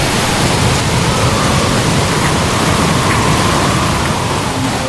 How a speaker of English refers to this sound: It's here. The howling wind. The driving rain. The storm surge along the coast.